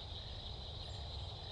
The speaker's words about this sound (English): Oh, I hear a croak. You're right. I think that was the cricket.